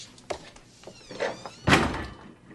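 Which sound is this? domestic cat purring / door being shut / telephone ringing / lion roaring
door being shut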